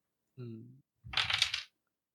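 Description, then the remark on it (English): A short voiced sound comes first, then a quick burst of dice clattering and tumbling for about half a second, fairly loud, before everything goes quiet. “Dice dropping on the carpet does not count.”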